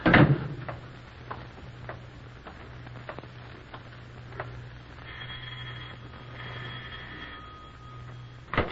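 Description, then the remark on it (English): A door is unlatched and opened: a sharp clunk, then scattered clicks and rattles over a steady low hum, with a buzzing electric tone partway through and another knock at the end. “I'll open the door for you.”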